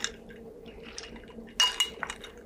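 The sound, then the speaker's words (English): Someone takes a sip of a drink: a light clink of glass followed by a few short, soft liquid slurps and swallows, with no talking. “Time for another sip.”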